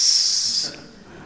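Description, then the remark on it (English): A person imitates the hiss of poisonous snakes in grain silos with a single loud, steady, breathy hiss lasting just over half a second, then it cuts off into quiet. “So I got snake charmers, and I did every possible method to get the snakes, but the more we try to do it, the louder they hiss.”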